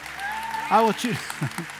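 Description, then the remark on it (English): An audience claps steadily in the background, a soft wash of many hands, while a man's voice speaks over it in the foreground. “Y'all clapping for me?”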